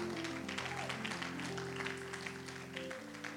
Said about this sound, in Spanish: A su nombre, dale un aplauso al Señor en esta hora.